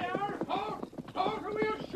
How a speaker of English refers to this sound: horses. That's right. Tonto, hear them, too. They come this way.